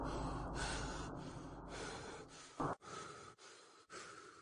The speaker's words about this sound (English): He was panting and out of breath.